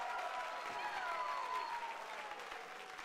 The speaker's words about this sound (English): Come on, if you believe that with me, I want you to clap your hands and give God a shout of praise. Come on.